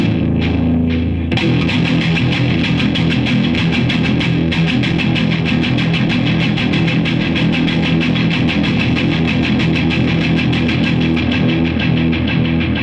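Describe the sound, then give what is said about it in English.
Loud, heavily distorted electric guitar playing a sustained, dense breakdown passage, with digital delay repeats thickening the sound into a continuous wash. No voices, just the guitar alone. “that's all based around, you know, that breakdown is just trying to get the distortion and just the right amount of mix on the digital delay.”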